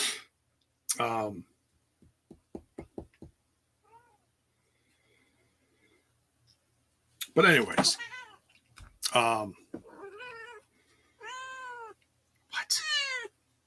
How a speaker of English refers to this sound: Shush. Crazy ass cat.